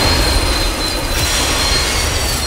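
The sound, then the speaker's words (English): A train rumbles loudly along the tracks, a steady roar with high, thin squealing from the wheels running through it continuously. Sustained, with no voices. “If you think trains will stop if they see a car on the tracks, you're right.”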